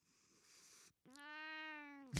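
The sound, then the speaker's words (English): A cat lets out a single long, drawn-out meow, loud and steady, after a brief stretch of soft breathy rustling and a moment of quiet. “Penny ran over here. Uh-huh. Like, are we bad-mouthing Jeff Bezos? Do you have something to say? Does he not support cats?”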